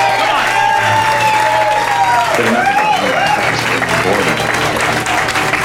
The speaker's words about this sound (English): Guys, let's give a giant round of applause to Robert Hayes.